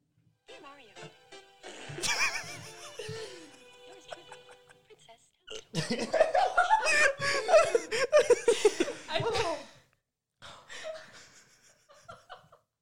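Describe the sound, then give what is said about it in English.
A blaring, buzzy fart sound effect rings out with a reverberant tail, followed by bursts of loud laughter and snorting giggles from several people. “fart reverb SFX.”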